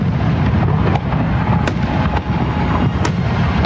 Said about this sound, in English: First, enjoy some more fireworks on this Independence Day.